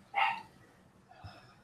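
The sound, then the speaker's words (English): A dog lets out one sharp, loud bark, then a quieter, shorter bark follows about a second later against a faint background hum. “Dog is barking.”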